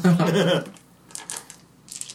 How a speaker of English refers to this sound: Well, that was a lot of dice. That is a lot of dice. Ooh. He's rolling them more than once.